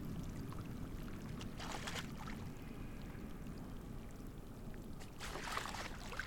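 Bursts of splashing break the water's surface twice as gentoo penguins leap through it in Antarctica, over a steady low rumble of glacial ice, moving water and wind. There is no talking.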